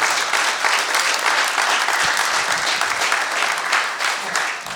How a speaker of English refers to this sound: I said we need to give God the glory. Let's give God the clap offering, the best clap offering to Jesus.